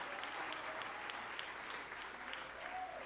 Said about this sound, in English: Clap your hands all over the building in Jesus' name.